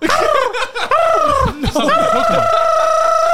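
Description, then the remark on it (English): A person loudly imitates a seagull call, a string of squawking, wavering cries that dip and rise in pitch before stretching into one long, sustained wail. “Do they sound like? The seagulls. How's the seagull sound?”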